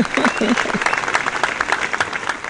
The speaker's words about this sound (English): Is the audience here? Hey. Audience right there. Y'all cheer if you're here.